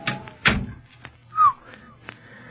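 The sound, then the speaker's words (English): A door that has been oiled opens quietly, with no loud creak: a solid thunk near the start, then a few light clicks and a brief soft tonal rub, with no talking. “Say, that door's been oiled.”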